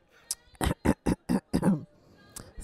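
Someone clears their throat loudly with a quick run of five or six rough, guttural bursts, followed by a brief pause and one last softer rasp, on the 7th floor of Bergdorf Goodman in New York.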